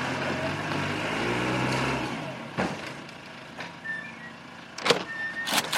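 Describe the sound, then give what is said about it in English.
A car engine rumbles and revs for a couple of seconds as someone gets in to drive off as quickly as possible, then settles as a few clunks and short electronic beeps follow, with no one speaking. “Then I'll get in my car and get the hell out of here as quick as possible.”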